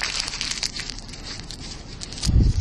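Crackly paper rustling fills the first couple of seconds, then a single dull, low thud lands near the end as a squish ball and a sheet of paper, dropped together by hand, hit the floor at the same time.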